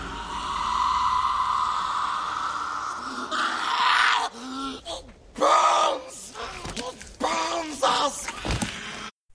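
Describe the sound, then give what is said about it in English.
An echoing creature screech from a movie rings out steadily for a few seconds, then gives way to a series of strained, rasping vocal cries saying "it burns us" that rise and fall in short bursts. “Yes, you can sort of hear the echo of the screech, and then it sort of fades into the actual reality of the, it burns us.”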